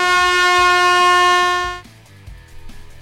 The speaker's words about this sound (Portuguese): Aquela semi-buzina.